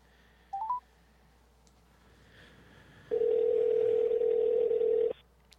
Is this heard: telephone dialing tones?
yes